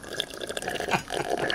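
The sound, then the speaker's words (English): Bubbling, gurgling water from someone blowing through a straw or into a cup, a continuous burbling run of small pops and splashes, moderately loud, with no talking. “Are you blowing bubbles?”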